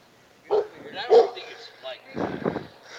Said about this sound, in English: There's a badass dog over here that I want to come interview. Can I come interview a dog?